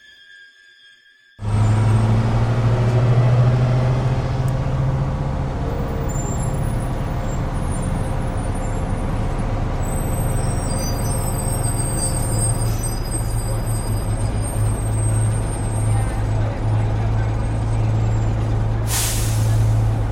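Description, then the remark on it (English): A bus rumbles up with a loud, steady engine drone and squealing brakes, then a sharp burst of air hiss near the end as its door opens. No one speaks. “Sound of a bus pulling up, and then the bus door opening.”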